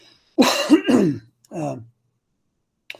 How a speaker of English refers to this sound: you wonder why I start coughing in the morning. I get up in the morning, I'm all by myself, me and the Lord and my internet friends. So I'm doing research and I don't talk. And then all of a sudden I start talking and this frog appears in my throat.